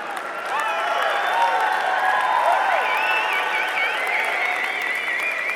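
audience applause

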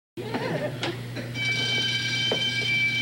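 burglar alarm ringing

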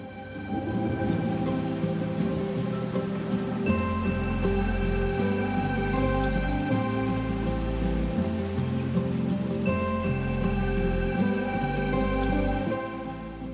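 water running downstream

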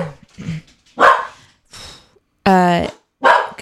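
dogs barking

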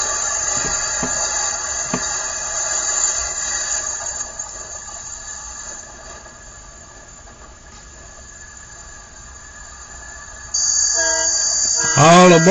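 train with horn

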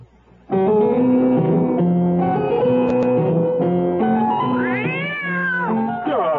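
cat meowing

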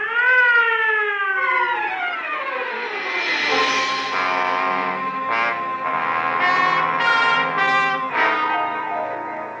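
ambulance siren

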